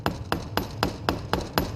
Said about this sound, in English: Then she places the ring on a flat surface and uses the hammer to make delicate patterns.